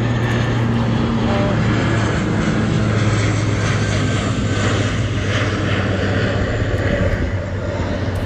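An airplane passes overhead, its engine a loud, steady roar with a deep droning hum that stays strong and constant throughout.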